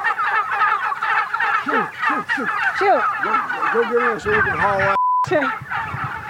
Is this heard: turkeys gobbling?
yes